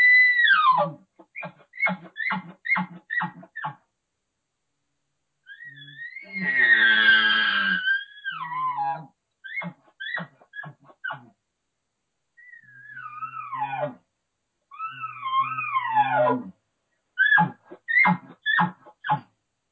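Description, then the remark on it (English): A person imitates bull elk bugles with a diaphragm call, making loud high whistling squeals that rise and fall, broken by rapid runs of short chuckling grunts and a few harsh, raspy bursts. “why don't you do a few bull sounds?”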